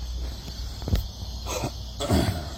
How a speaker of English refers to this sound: Apologize. Trying to clear my throat.